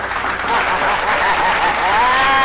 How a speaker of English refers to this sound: Give me a hand clap. Give me a hand clap.